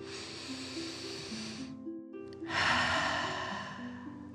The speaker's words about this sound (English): Breathing in through your nose and out of your mouth. Again, deep breath in and out. Last one, fill up your chest and belly. Deep breath in and out.